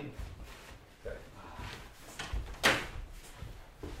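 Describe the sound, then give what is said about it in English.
A single sharp knock-like thud of a door shutting partway through, with softer shuffling and handling noises around it, otherwise quiet. “Okay, in the future, don't let that door close.”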